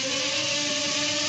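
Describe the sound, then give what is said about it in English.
A small, cheap drone of the kind used to sample the environment is flown around the microphone. It buzzes loudly and steadily, its motors giving a high, whining hum with a droning undertone that holds without a break. No one speaks. “Buzzing the microphone.”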